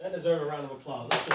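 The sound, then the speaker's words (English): Voices talk for about a second, then a short, loud burst of hand clapping breaks out at the very end, bright and dense rather than a few separate claps. “Deserve a round of applause. Yeah. clap it up.”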